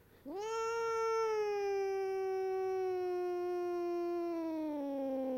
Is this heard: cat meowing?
yes